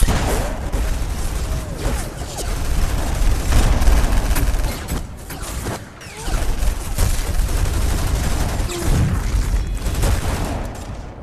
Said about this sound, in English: It's a lot of explosions, gunshots going off.